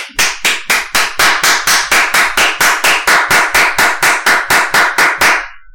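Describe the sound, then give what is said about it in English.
One person sitting in their office claps hands to celebrate money arriving, in a quick, steady rhythm, about twenty loud, sharp claps over several seconds, with no talking. “I literally applaud. I will sit in my office and this is me.”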